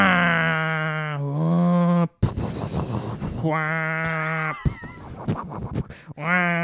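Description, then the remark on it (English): A voice imitates an Airbus A350 jet engine starting up: a steady buzzing hum that steps up in pitch, then sputtering, raspy bursts, another sustained drone, and more choppy noise before a final hum. “Ooh, the Airbus A350. So they actually changed that from the 340 to the 350.”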